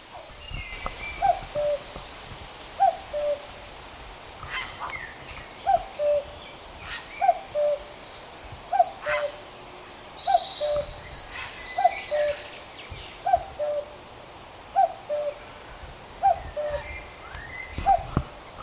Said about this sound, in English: Here comes the cuckoo, flying right at me.